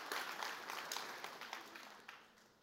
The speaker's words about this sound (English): Yeah, you can clap.